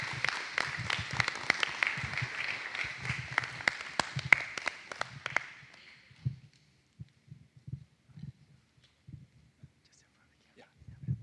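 A church audience applauds for about five seconds as a man is welcomed up to share his testimony, dense overlapping claps that then stop abruptly, leaving soft low thumps and murmurs from people settling.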